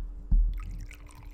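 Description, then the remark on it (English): A short pour of liquid into a glass: a soft thud, then about a second of bubbly, splashing trickle at moderate volume, with no voices. “Oh, that pour. We definitely got that on there.”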